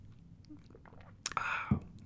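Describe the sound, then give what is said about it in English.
A single sip of Martinelli's sparkling apple cider: a sharp click, then a brief airy slurp lasting about half a second, ending in a soft low gulp, over a quiet background. “I'm going to take a sip of Martinelli's.”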